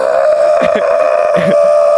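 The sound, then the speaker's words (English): A voice imitates an Aztec death whistle: a steady, loud, shrill wailing tone held for about two seconds, rough and breathy, with brief throaty wavers partway through. “Maybe the person had an Aztec death whistle on a stand in front of them with their arms to the side, and they're just like...”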